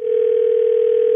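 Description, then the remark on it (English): A steady telephone dial tone, heard as someone calls a man back, holds one unbroken pitch at constant loudness for just over a second, with no voices over it. “Let's call him back.”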